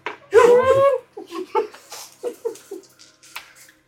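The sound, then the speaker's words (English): A buzzy, voiced mouth imitation of a fart, made at a guard walking away during a role-playing game session, lasting under a second, followed by a run of short, evenly spaced laughing bursts that trail off softly. “I make a farting sound when he walks away.”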